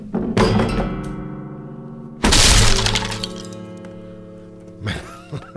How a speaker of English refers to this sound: Did you see the way my foot went right through the strings and crashed into the guitar?